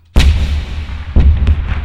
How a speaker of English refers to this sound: The cannon fired with a booming noise that echoed through the landscape.